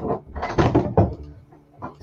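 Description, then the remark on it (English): A whole shelf of self-help books is knocked over, tumbling off in a quick burst of dull thumps and papery clatter, loudest around the first second, followed by a brief muffled voice. “Sorry, I dropped my, I knocked over some books over here.”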